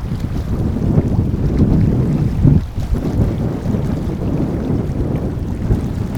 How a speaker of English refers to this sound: You'll hear that it's quite windy. Listen to this.